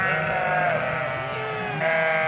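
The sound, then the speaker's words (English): Sheep in their pens bleat loudly and continuously in the morning, several overlapping wavering cries, with a noisy crowd of animals filling the space and no talking. “The next morning, things were erupting in the sheep pens.”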